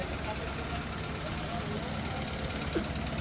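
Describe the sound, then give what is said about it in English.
A cement truck's engine idles with a steady, deep rumble that holds at an even level throughout, continuous, with no revving or pauses. “There's the cement truck.”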